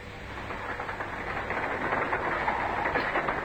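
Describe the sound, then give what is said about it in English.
A steady rumble of a train rolling along the rails, with a constant low drone and a dense rattling hiss that holds at an even level for a few seconds, with no voices. “I'll look up the trains at once.”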